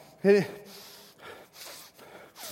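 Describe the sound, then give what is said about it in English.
A voice imitates a boy in a swimming pool slowing his breathing down: a sharp voiced gasp at the start, then several long, airy breaths in and out, moderately loud, with no words. “And he starts to like slow his breathing down.”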